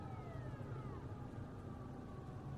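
A faraway siren wails, its pitch sliding slowly downward over a steady low rumble of background noise. The siren stays faint and distant throughout, with no voices present.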